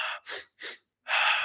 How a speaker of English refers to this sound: Whatever helps you, different things will help you. Maybe it's, you know, really sniffing the energy up, two inhales and exhale.